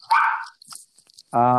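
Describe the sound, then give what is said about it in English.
A dog in an apartment barks twice, loud, with a short gap between the barks filled by faint rustling and clicks. “Yeah, and he's going to be barking for a little while.”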